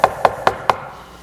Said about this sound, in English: God, I'm knocking.